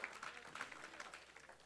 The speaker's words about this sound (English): Give the Lord a hand clap of praise this morning.